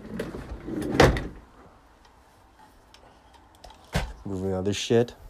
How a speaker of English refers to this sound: Okay, so I'm moving a chair. Moving a chair right now.